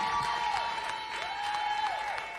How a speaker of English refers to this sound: God will bless my life. God will favor your life. Come on, somebody. Clap if you're ready for that blessing.